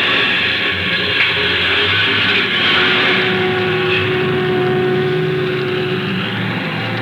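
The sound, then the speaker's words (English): A bus engine rumbles steadily and loudly as the bus pulls away onto the highway, a continuous drone with a faint whining tone shifting through it and no voices. “Well, here we go, folks.”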